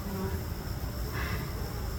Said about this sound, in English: What happened to that poor bee up here? I have a brush too. I had to brush them off kind of like that. There's a bee.